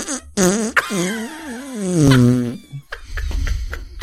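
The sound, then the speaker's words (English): A long, wobbling raspberry blown with the mouth against a forearm as a fart sound effect, rising and sputtering for about two and a half seconds, followed by a few short breathy sputters and rustling. “I would like to clarify, that is my mouth on my forearm and not straight from the source on that sound effect.”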